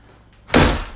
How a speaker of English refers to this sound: Don't slam that, you fucker. Stop slamming it.